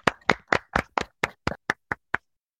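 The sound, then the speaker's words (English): A small group, the live audience of a show, clapping hands: about ten sharp claps in a quick, steady rhythm that grow fainter and trail off after a couple of seconds, with no talking. “Round of applause, everybody, for the live audience. Everyone clap.”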